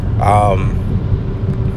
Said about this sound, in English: So today's segment, I'm in a car, so if you hear like background noise, that's me in the car.